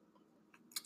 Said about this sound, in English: I haven't even been sipping yet. I'm taking a sip of wine.